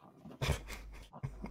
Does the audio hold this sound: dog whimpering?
yes